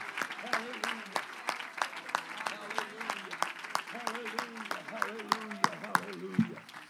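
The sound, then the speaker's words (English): A church audience claps their hands to the Lord in a steady, sharp patter that continues throughout, with voices talking or calling out underneath the clapping. “Let's clap our hands to the Lord for a moment.”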